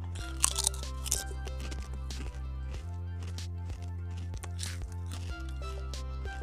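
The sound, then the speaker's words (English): Crisp crunching and chewing of Doritos chips in a few short bursts, loudest near the start and again later, over a steady, tonal musical bed with no talking. “And eat Doritos in your face.”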